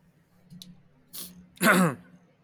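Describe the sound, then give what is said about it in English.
Two harsh coughing bursts from a person having a coughing fit, a shorter one followed by a louder, raspier one, with a low murmur underneath and quiet pauses between them. “Sorry, I had, like, a coughing fit right now.”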